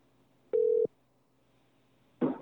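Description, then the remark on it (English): A telephone ringback tone sounds once as a call is placed from a different phone, a short, steady electronic beep on a quiet line, followed after a pause by a brief burst of noise as the call connects. “I texted him saying that we're calling from a different phone.”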